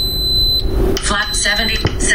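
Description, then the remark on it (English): A pressure cooker lets out high-pitched electronic beeps, three beeps after start is pressed, signalling that it is heating up; then it stops and someone starts talking over faint background noise. “Three beeps. Okay, and I think the recorder caught that. There were three beeps, yeah. Which means it's heating up.”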